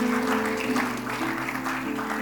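An audience claps steadily as a clap offering to the Lord, with dense, continuous applause and a low sustained tone underneath, likely an organ or keyboard holding notes.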